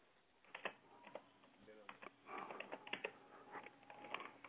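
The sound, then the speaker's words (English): Quick, irregular clicking taps of fingers typing an email address on a computer keyboard, fairly quiet, with a faint background hum and some softer clatter mixed in. “My man is typing away, clickety-clack.”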